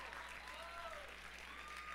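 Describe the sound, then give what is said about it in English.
An audience claps to thank the Lord together, a dense, continuous wash of many hands, with a few faint voices rising over the applause throughout. “Stop clapping like you from San Antonio.”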